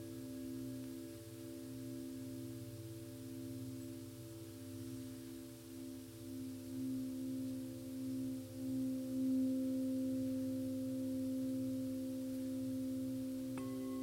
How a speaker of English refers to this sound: Our mind may wander away, lost in thought for a moment, entangled in some idea or memory. Let the bell sounds bring you back home.